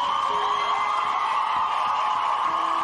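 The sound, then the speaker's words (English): A large crowd cheers and applauds in a standing ovation, a dense, steady roar of clapping and whoops that stays loud for the whole few seconds, with no one speaking. “Standing O.”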